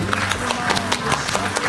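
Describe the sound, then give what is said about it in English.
A short burst of applause introducing the weather report on News 95.5 and AM 750 WSB radio, with many hands clapping in a dense, steady patter at moderate loudness for under two seconds. “Applause for the weather report brought to you by Ackerman Security.”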